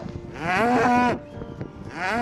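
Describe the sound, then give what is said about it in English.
Cows moo loudly in a field in spring, one long drawn-out call followed by a quieter pause and then another moo starting, with no talking. “It's a stampede of frolicking spring cows.”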